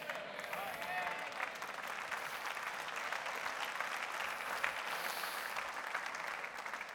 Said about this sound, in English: I'm going to go and I'm going to clap my hands, all you people.